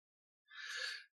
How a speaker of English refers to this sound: Bless you.